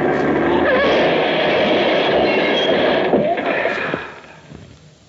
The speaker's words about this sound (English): This 10-ton truck does a nice job when it hits a tin can like that.